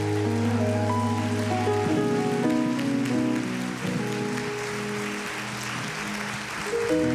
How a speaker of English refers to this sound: RBC, let's stand to our feet and give our panelists a round of applause.